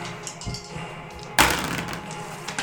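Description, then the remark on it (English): A d20 die drops onto a table with one sharp, bright clack and a short rattling decay, framed by a few faint taps before and after over a low steady hum. “I had another d20 floating around here somewhere.”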